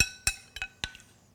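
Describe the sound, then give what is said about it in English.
A spoon clinks against a ceramic bowl of hot soup with shiitake and chicken four times in an uneven rhythm, each bright ringing tap fading quickly, with no voices. “Do you want get a spoon?”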